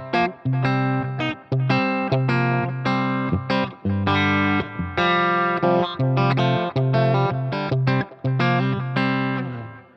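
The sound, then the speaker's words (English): An electric guitar plays a run of sustained notes and chords with the delay mix and reverb turned down a little, leaving only a light trace of delay echoing behind each phrase for a more traditional sound; fairly loud and steady with no talking. “Turn the delay mix down just a bit.”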